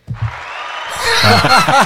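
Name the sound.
fake applause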